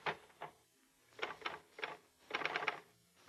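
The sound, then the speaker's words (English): Typing on a portable typewriter resting in the typist's lap with a sheet of paper inserted: short, irregular bursts of clacking keystrokes with brief pauses between clusters, fairly muffled, with no voices. “You insert a sheet of paper into the portable. Put it in your lap to deaden the noise and vibration.”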